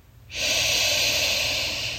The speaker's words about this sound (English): Inhale the invigorating scent of eucalyptus, heightening your senses as you practice our heart diamond breathing. Picture a beautiful heart forming as you take a big breath in.